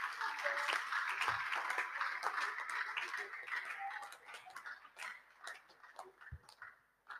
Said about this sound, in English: Oh, clap for Jesus.